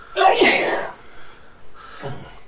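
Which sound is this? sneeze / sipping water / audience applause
sneeze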